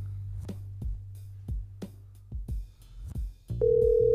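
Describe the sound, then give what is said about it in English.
A few soft clicks and taps, like buttons being pressed, then a steady electronic phone tone sounds and holds at the end as an outgoing call rings through. No one speaks. “I'm waiting for the call to go through.”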